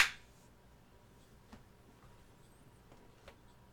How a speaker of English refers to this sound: All right, clap sync.